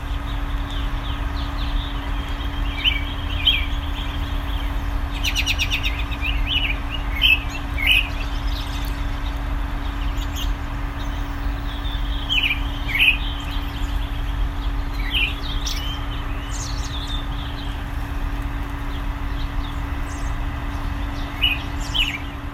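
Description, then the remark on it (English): Robins sing in a tree in early February in Bloomington, Indiana, their bright, warbling phrases arriving in repeated bursts over a steady low rumble of background hum, with several birds calling and no voices. “You've been listening to Robins in a Tree, early February, in Bloomington, Indiana.”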